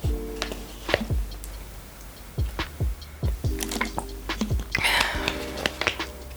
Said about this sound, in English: Drink your water. Drink your water. I was gonna edit that out, but you know what? That's another part of self-care. Make sure you are hydrated. I'll even take the last little sip of this water bottle